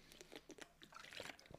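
Quiet wet sounds of someone drinking water: a series of short sips, gulps and soft mouth clicks over under two seconds, with no talking.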